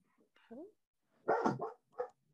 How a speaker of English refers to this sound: And we have a random dog joining us. Yeah, random dog.